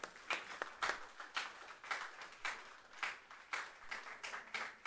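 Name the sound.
audience applause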